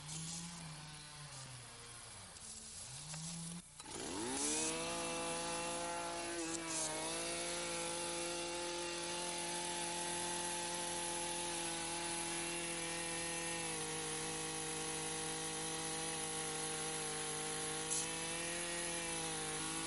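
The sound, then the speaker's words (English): A power drill bores into maple tree bark to tap the tree for sap at a sugar bush, with a loud, steady motor whine that sags and rises in pitch as the bit bites, pausing briefly near the start before running on continuously. “Tapping the trees is the first step at sugar bush. These days, it's done with a power drill”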